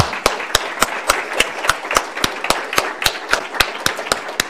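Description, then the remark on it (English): Steady, evenly spaced hand claps, roughly three or four per second, sharp and fairly loud, with no talking and only a soft hiss between them. An audience is applauding a congressman, a guest at an event co-hosted with Hudson. “But first, how about another round of applause for really a great guest?”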